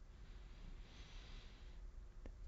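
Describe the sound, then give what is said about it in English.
A breathy cough-like snort or rough exhale into the microphone, made without the cough button pressed, lasting about a second, followed by a short sharp burst near the end. No one speaks. “Oh, I got a cough button. I didn't even press it.”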